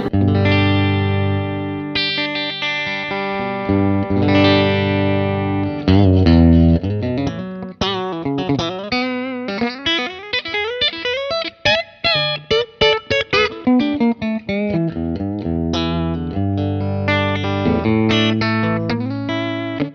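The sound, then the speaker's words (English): Bright, chiming clean electric guitar played through a stock Vox amp, a cheaper China-made version of the AC15, on the top boost setting, plays alone, opening with sustained ringing chords, then shifting to quicker picked notes and choppy strums before settling back into long, shimmering chords. “But I love that chimey sound. So right now, I'm mic'd up on a, these are just like stock, I think they're made in China, so they're the cheaper version of like the AC15.”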